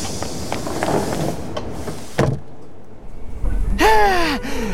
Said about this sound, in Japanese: ドアが閉まります。ご注意ください。駆け込み乗車は危ないですから、おやめください。